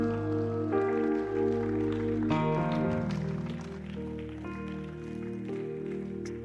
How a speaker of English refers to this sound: Hallelujah. You can clap better than that. You can do better. Amen. Can I have some volume, please?